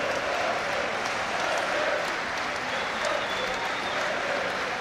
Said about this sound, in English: Wolves players in front of the South Bank taking their applause, and they will head round on a lap of honour as Chelsea make their way off dejected.